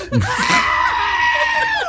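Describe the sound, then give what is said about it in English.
A loud, sustained goat scream fills nearly two seconds, a harsh, wavering, almost human-like shriek that holds steady before cutting off abruptly, alone with no talk over it. “So the goat just lets out a classic goat scream, the one we all know and love.”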